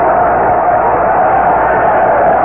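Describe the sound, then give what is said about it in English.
A small ballpark crowd at an Expos baseball game, trying to root the Expos on, keeps up a steady, unbroken wash of noise, a dense blended murmur of many voices at an even, fairly loud level with no single words standing out. “A small crowd trying to root the Expos on.”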